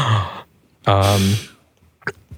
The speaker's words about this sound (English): It's like, oh, gasps in the back.